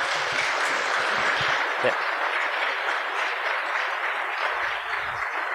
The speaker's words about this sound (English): We give a nice big round of applause, ladies and gents.